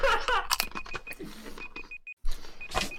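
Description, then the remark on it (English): A kitchen timer beeps repeatedly in a steady, high-pitched pulse, signalling that the time is up, while people laugh and bustle around it with some clattering noise. “It's beeping at me, the timer is up.”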